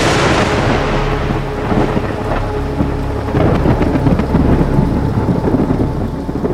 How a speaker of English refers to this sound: The thunder and lightning were getting so close, and I just recorded it for, you know, whatever, 10 seconds.